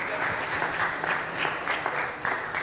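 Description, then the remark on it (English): Audience applause for the band, at a worship service at Hope Community Church: a steady wash, dense and sustained for a few seconds with a slightly muffled quality and faint crowd voices mixed in. “Let's have another big round of applause for our band, ….”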